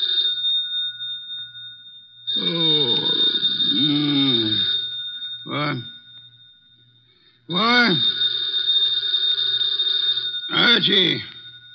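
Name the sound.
telephone bell ringing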